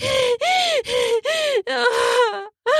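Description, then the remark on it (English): A loud run of sharp, voiced gasps, about six in quick succession with brief pauses between them, each rising and falling in pitch. No words are spoken. “I gasp, shit, terrified of being double penetrated.”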